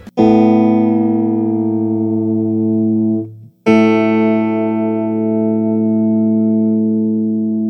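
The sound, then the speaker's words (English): The open A and B guitar strings are struck together to detune the open B string until it sounds the same as the open A. They ring out with a bright, sustained tone, fade briefly, then are plucked again and sustain with slight beating between the pitches. No one speaks. “And then one final step is playing the open A and B strings together to detune the open B string until it sounds the same as the open A.”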